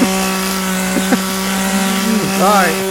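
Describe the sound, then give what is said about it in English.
A chainsaw engine runs loud in a steady buzzing drone, its pitch rising and wavering briefly as it revs near the end. “what I want for Christmas is a chainsaw bayonet”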